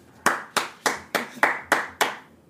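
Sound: hand clapping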